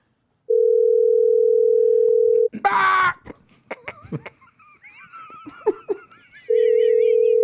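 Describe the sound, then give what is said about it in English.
A phone line ringing back on an unanswered call: two long, steady electronic rings with a pause between them, while laughter and excited shouting fill the gap. “It is kind of crazy, like that nobody's answering their phone.”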